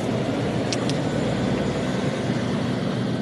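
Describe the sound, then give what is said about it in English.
Heavy lorries rumble out of the depot of a large logistics company in a loud, steady low drone of diesel engines, with a couple of brief high squeaks early on and no voices. “A few kilometres away from the Ferme du Puy, at a large logistics company called Valet Transport, Lorries rumble out of the depot while, not far away, sheep nibble peacefully on the spring grass and flowers.”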